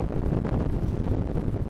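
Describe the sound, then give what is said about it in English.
Cold outdoor wind, with snow blowing into the face just after getting off a train in Brooklyn, New York, buffets the microphone in a steady, loud, low rumbling roar with gusty fluctuations and no voices. “as I got off the train, it was so cold that it began to snow into my face.”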